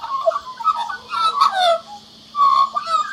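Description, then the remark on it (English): An Australian magpie, a black and white bird in a tree, carols with a rich, fluting warble of gliding and tumbling notes in two bursts separated by a short pause, with no voices present. “It's a magpie. What a lovely song it's singing.”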